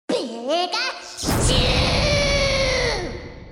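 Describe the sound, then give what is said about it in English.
The squeaky, high-pitched voice of Pikachu from Super Smash Bros. chirps a few quick, bending syllables, then a loud crackling burst erupts and holds for a couple of seconds before fading, like a video game attack effect. “And imaginary, like Pikachu in Super Smash Bros.”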